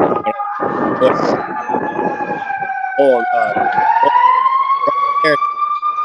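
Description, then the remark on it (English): A loud emergency vehicle siren wails continuously, its tone sliding down and then rising again, with rumbling traffic noise and bits of talk mixed underneath. “I guarantee those sirens are coming for you.”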